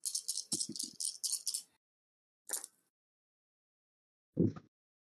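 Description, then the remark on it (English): Dice from a dice pool rattle in a quick run of shaking clatters for about a second and a half, then a single brief clack, and finally a duller knock as a die lands and rolls, one die getting lost. “I lost a die.”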